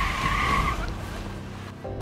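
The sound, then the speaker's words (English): A car speeds out of a driveway with a loud, high tire squeal lasting under a second, followed by the steady roar of its engine as it pulls away. No one speaks. “But when she saw us coming, Denise took off out of the driveway.”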